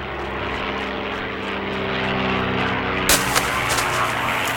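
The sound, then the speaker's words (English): A propeller airplane drones overhead, its steady engine hum with strong harmonic bands growing louder and then sweeping past with a brief rushing burst, continuous throughout with no talking. “You're almost there. So's the plane.”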